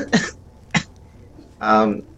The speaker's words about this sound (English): I'm going to cough.